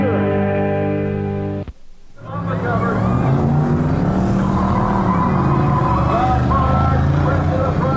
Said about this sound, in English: Where are we? Toledo Speedway. School bus figure eight.